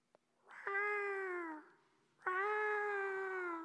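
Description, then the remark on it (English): A person imitates an eagle call with two long, loud, strained cries, each sliding slightly downward in pitch, separated by a short pause, with no other talking. “Good eagle call, eh?”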